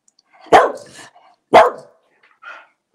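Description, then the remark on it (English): A female dog named Bouncy barks twice, about a second apart, each a sharp, loud bark with a short tail, answering whether the Lions will win the Super Bowl, followed by a faint softer sound. No one speaks. “Bark once if they're going to win the Super Bowl. Bark twice if they're going to win the Super Bowl. That was twice, I think.”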